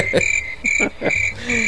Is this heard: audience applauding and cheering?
no